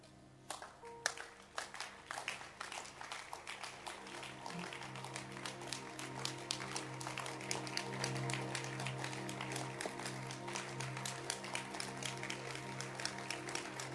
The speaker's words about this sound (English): If you are clapping, clap well. I'm watching how you are clapping. I'm watching how you are clapping. Clap well.